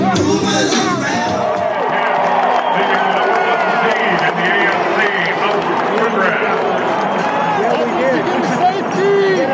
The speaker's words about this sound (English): And a cheer went out as the Dolphins beat the Patriots.